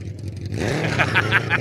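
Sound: car engine revving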